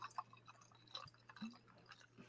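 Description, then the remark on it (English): Ginger beer being poured into a glass for a Moscow Mule: quiet, irregular splashes, drips and bubbly pops scattered over a couple of seconds, with a steady low hum underneath and no talking. “So I'm going to pour some in here.”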